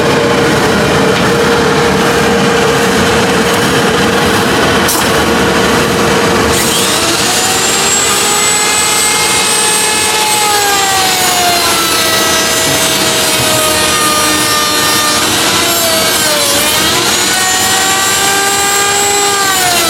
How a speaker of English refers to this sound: So he's routering out the little tabs, you know, the little plate where the plates go for the hinges. Does that first.